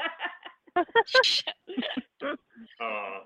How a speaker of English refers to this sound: Bless you.